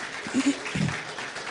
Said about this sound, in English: Well, I'll tell you what, let's give these guys in the band another round of applause. They did an awesome, awesome job.